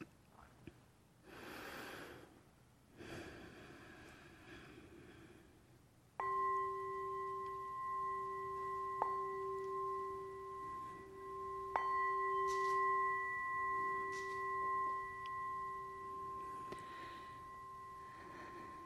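A meditation bell is struck twice at the start of a guided meditation, each strike giving a clear onset and a long, steady ringing tone with bright overtones that sustains for several seconds. Soft breathing comes before the first strike.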